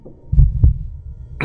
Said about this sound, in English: Once more, you feel your heartbeats.